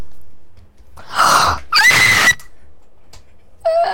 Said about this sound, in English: … fixed the echo with his scream.